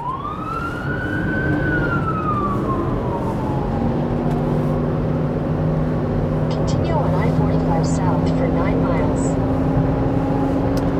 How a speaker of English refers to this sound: Can't tell where that fire truck is going. They're going right past me.